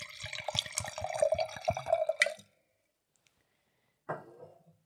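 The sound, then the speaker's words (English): Red wine glugs and splashes into a glass for about two seconds, then stops; after a short silence comes one brief second pour or splash. “Having just poured a nice glass of red wine”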